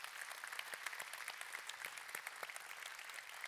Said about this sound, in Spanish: Y yo también quiero que nosotros le demos un aplauso a sus esposas